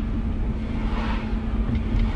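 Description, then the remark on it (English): Steady road and engine rumble from inside a moving hydrogen fuel-cell electric car, with other cars overtaking it, one swelling briefly louder before fading back into the constant drone. No one speaks. “The only noise is from other cars overtaking me.”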